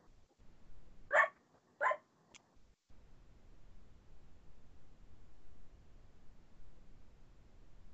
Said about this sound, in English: hold on, let me put my dog inside because they're just going to be barking at my dog.